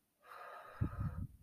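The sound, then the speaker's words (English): A single slow, deep inhale drawn through the nose during a guided breathing exercise, airy, with a soft rumbling snort-like texture toward the end and no talking. “And as we're breathing, as we're inhaling and exhaling, I want us to release those things that we do not want to take with us.”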